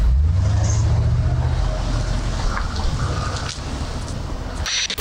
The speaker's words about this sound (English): You know, how beautiful would it have been, Natasha, for that Mercedes SUV not to turn over? It sounded like there were some engine issues there.